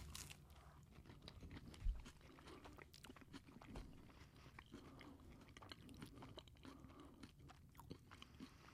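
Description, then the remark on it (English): Wet chewing of a first mouthful of cheeseburger without pickle, steady and rhythmic for several seconds, with soft squishy crunches and one sharper bite near the start, no talking. “I can totally hear you chewing.”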